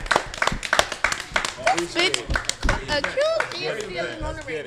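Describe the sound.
A round of applause at a live Colorfull Xchange event, with rapid, irregular claps running throughout, while voices talk and cheer over it in the second half.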